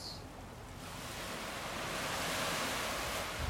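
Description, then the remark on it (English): Steady ocean surf washes ashore in a broad, continuous roar that swells slightly louder midway, with a soft wind hiss layered over it and no voices. “Settle in with the sounds even around the wave, sometimes of wind or boats.”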